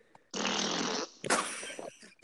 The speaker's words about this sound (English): You hear the fart that it made in the beginning? What it sounded like?